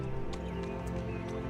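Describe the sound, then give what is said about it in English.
Horse hooves clip-clop at an unhurried, uneven pace, a few distinct knocks layered over a steady droning background, with no voices. “But you find a place to hitch the horses, I'm assuming?”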